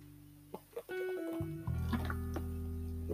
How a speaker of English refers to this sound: Sorry. Let me take a drink of water.